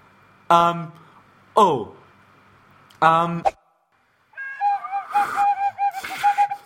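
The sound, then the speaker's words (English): Three short, harsh honking squawks, then a person whistles a wavering, warbling whistle that rises and dips in quick runs, fairly loud, with no talking. “I'm trying to whistle with you.”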